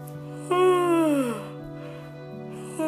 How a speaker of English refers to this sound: So sitting in a comfortable position, go ahead and trigger a yawn. A real yawn for yourself. Maybe you're not sitting. Maybe you need to stand and yawn with your whole body.